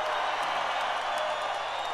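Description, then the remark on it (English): A large crowd at a rally cheers and applauds after Dana White's speech in support of Donald Trump, a steady, loud roar of overlapping voices and clapping that holds at an even level for the whole two seconds, with no single voice standing out. “So, crowd's loving it.”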